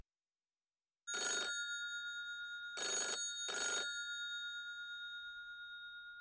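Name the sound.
telephone ringing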